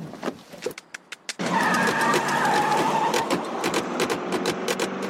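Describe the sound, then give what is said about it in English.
Car doors open and bang shut several times in quick, uneven succession, over and over, then a loud, steady car-like rumble takes over with more sharp knocks and slams scattered through it. “That noise at the end is the sound of the car doors closing and shutting, opening and shutting over and over again.”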